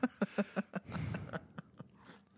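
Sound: sipping beer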